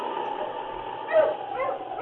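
dog barking and yipping

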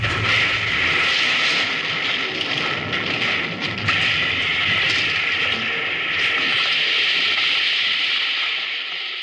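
train rushing past

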